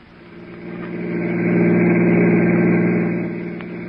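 car engine running

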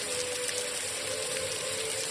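shower water running

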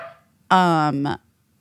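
dog barking

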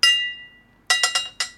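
bell rung three times

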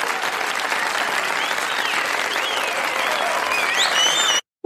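audience applause

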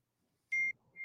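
phone message notification beep

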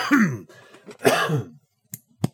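throat clearing and coughing

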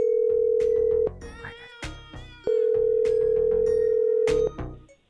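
phone call ringback tone

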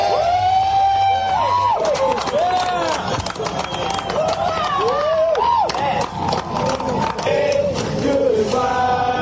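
crowd cheering and shouting

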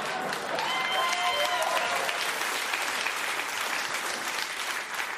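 studio audience clapping

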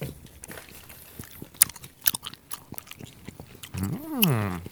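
chewing bubble gum

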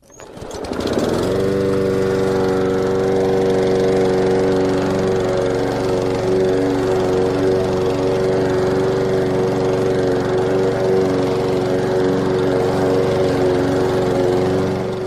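lawn mower running

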